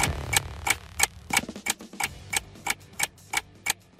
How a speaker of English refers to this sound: One, two, you hear the clock ticking.